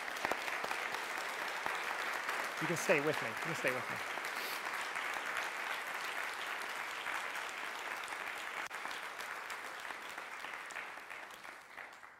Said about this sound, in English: Amen. And then you can applaud if you want.